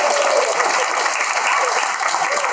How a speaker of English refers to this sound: Okay, just a round of applause for me for doing stand-up comedy.